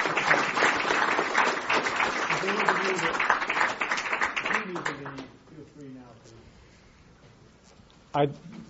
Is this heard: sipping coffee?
no